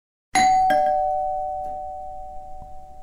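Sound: doorbell ringing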